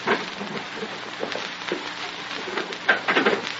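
Glass being broken with a police nightstick, crunching in a steady crackly rattle, followed by a couple of sharper clacks near the end as a door bolt is drawn back; no one speaks.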